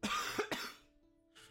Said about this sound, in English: Bless you. Thank you. I thought it was a cough. It was a cough.